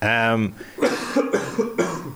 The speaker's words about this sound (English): I'm going to cough talk.